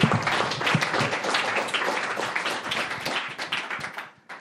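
Many people applaud, a dense, steady patter of many hands clapping at once that holds for several seconds before trailing off near the end.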